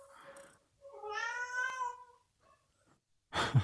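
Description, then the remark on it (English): A male cat meows for attention and food: a short call, then a long, drawn-out meow that bends up and down in pitch, followed by a brief rustling burst at the end. “He just stares at me and meows like that. He tries all different kinds of meows, different tones, different pitches, different lengths.”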